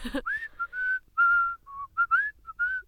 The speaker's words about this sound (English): It's good. It's good. Jaunty. Yeah. Jaunty. But you can whistle in tune.